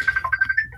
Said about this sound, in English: There's an alarm somewhere.